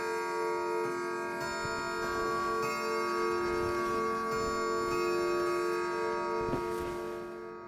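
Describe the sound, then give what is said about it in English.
A clock ticks steadily while it chimes the quarter hour, resonant bell-like tones hanging in the air throughout, moderately loud, with no voices. “The quarter was so long that he was more than once convinced he must have sunk into a doze unconsciously and missed the clock.”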